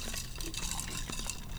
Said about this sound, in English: Ya que tienen su hielo adentro, le dan un shake. Y para acabar, lo pones en, ya, y pour it out en tu vaso.